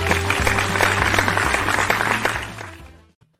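A burst of canned applause sound effect, played to welcome a guest, fills about three seconds with dense, steady clapping at a loud level before fading out quickly, with a low sustained hum underneath.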